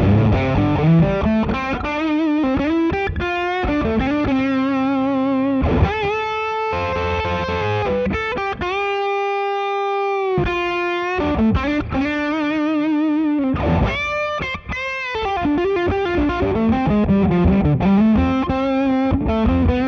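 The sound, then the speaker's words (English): A heavily fuzzed electric guitar plays sustained notes and short melodic runs through a distortion pedal on its crunch setting, with the pedal's bass control turned up to about 3 o'clock, giving a thick, smooth, bass-heavy tone at a steady loud level throughout, no talking. “So as you can hear, it's really fuzzy. It's not nearly as crunchy.”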